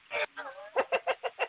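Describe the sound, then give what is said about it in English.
On Halloween, a person imitates a chicken to call someone a chicken, with a drawn-out squawk followed by five quick, evenly spaced clucks, loud with no other sounds around. “I was just calling the chicken shit.”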